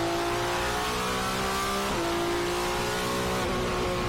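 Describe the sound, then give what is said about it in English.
A Ferrari F50 GT1 race car engine at the Yas Marina Circuit in Abu Dhabi revs loudly and steadily, its high whining pitch climbing, dipping briefly, then climbing again as it passes by. No voices. “Yeah, this is a Ferrari F50 GT1. At the Yas Marina Circuit in Abu Dhabi.”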